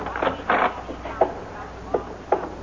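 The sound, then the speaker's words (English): The stage door of a coliseum is opened: a rattling, scraping rush of movement followed by a few sharp clicks and knocks from the latch and frame, spaced out over a couple of seconds. “Here's the door.”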